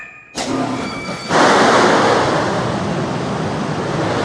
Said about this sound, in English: Then I'll release the box. It's a bit of a drop, so expect a splash.